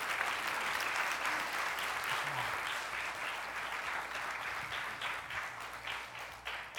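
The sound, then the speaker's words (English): A crowd applauds steadily, a dense wash of many hands clapping at once that holds a fairly constant loudness throughout, with no voices standing out. “Give another round of applause.”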